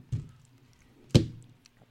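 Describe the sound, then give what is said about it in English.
Two dull, heavy thunks about a second apart, the second louder and sharper, as a candy bar is slammed against a knife to cut it, with quiet pauses around them. “Are you trying to cut the bar by slamming it into the knife?”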